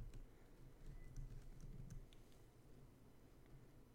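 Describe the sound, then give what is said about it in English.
Keys being fiddled with: soft, irregular metallic clicks and light jingles scattered across a few seconds over a low background rumble, with no one speaking. “Let me fiddle with my keys.”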